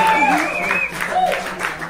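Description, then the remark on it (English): An audience at the Fight Club comedy competition claps steadily for the winner for about two seconds, a dense unbroken patter, with voices calling out and whooping over the applause. “Wait, you can clap, guys. Yeah, there we go.”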